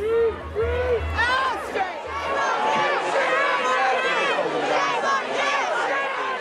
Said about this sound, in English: It took a while for me to get to the front, and before that we couldn't see what was happening other than at the front people were booing and there were shouts of shame on you.